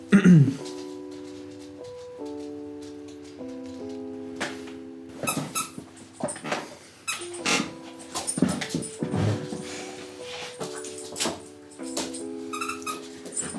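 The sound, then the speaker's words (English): A dog named Winnie excitedly squeaks a little donut toy, producing a long run of high, whining squeaks in quick irregular bursts, with some rustling and panting mixed in. “That is Winnie going absolutely mad in the background. Driving us up the wall today. Squeaking a little donut.”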